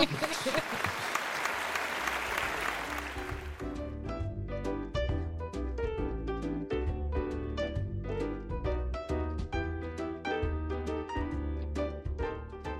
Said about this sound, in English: If I had a sound effect here that was clapping, I would use that now.